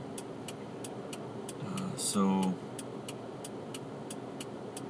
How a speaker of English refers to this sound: I'm about to get gas here, so I'm going to sign off. People are looking at me funny for talking in my car.